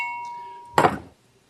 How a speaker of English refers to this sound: Okay, so I'm going to ring my bell.